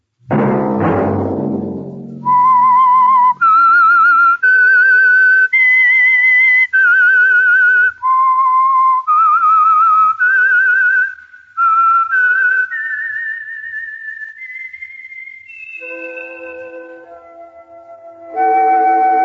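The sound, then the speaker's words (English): The whistled theme of the Signal Oil radio program The Whistler: a clear, loud melody of sustained, wavering notes rising and falling in a slow tune, played alone after a brief low rumbling sound at the start, ending with a short musical chord. “Whistle be your signal for the Signal Oil program, The Whistler, each Wednesday night at this same time.”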